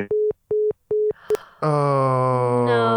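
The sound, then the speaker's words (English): A phone line's busy tone after a call is cut off: three evenly spaced beeps, then a click and a brief blip before a loud, sustained droning tone cuts in and holds to the end. “No, we cut lost off the call.”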